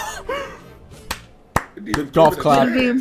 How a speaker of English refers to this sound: Golf clap.